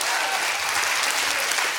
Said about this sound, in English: Come on, somebody. Clap your hands and rejoice in that today.